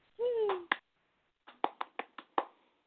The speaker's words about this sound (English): What do you think? Round of applause.